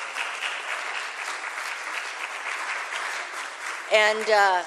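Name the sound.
audience round of applause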